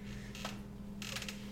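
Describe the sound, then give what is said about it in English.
A door creaks open in a couple of drawn-out, grinding squeals over a steady low hum with no voices. “The door's behind you. Open.”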